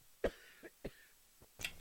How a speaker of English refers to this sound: And it is helping with my lawnmower cough.